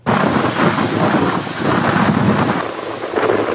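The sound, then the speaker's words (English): Loud, roaring wind and heavy rain from Tropical Storm Pabuk in Thailand, bringing surging seawater and bringing down trees and power lines; a dense continuous rush that stays steady throughout with no voices. “Pabuk brought high winds, intense rainfall and surging seawater.”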